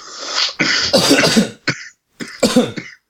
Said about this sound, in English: A couple coughs.